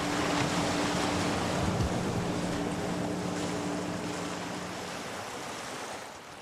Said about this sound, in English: The weather conditions have got worse. The day is grey and wet, and the waves are coming fast and strong.